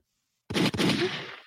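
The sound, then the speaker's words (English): A loud gunshot sound effect bursts out of silence, a second sharp crack following a split second later, then a brief rumbling echo that fades. No voices. “Where's my gunshot at?”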